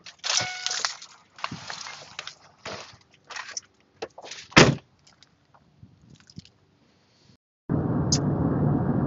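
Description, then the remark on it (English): A key scrapes and a doorknob rattles in the lock of a client's door whose deadbolt is locked, a run of metallic clicks and clunks. The handling stops and a steady rushing noise takes over near the end. “I only have a key to the doorknob, so she leaves it unlocked for me when I walk.”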